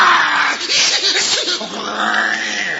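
Loud, continuous growling of lions, a rough rumbling snarl with wavering pitch that rises and falls for about three seconds without a break, with no talking over it.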